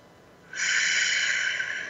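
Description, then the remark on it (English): A single long, steady, deep inhale drawn sharply through the nose during a breathing exercise, starting abruptly and holding a loud, airy hiss for over a second. “Take another deep breath. See how big you can make your belly.”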